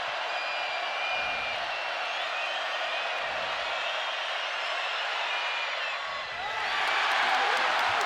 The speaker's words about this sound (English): And here we go. We'll let the crowd tell you what happens on the free throw.